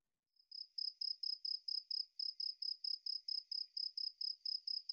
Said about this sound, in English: We haven't played the crickets in a while, so I guess we can bring.